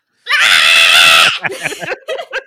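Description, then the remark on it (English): A person loudly imitates a goat's bleat in one long, strained, wavering cry lasting about a second, followed by a burst of laughter and chatter. “It's really great because nobody ever expects me to just all of a sudden just like bleat at the top of my lungs.”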